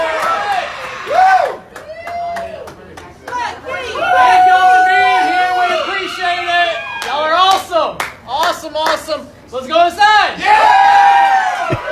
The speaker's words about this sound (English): As they open the doors, everybody excited to go in.